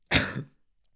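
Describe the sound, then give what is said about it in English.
A single harsh cough from a person whose throat is in pain, breaking into a rough throat-clearing rasp, about half a second long, followed by silence. No one speaks. “You guys are gonna have to excuse the coughing.”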